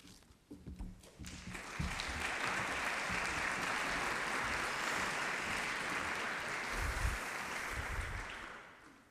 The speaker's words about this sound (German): Ja, herzlichen Dank für Ihren Applaus.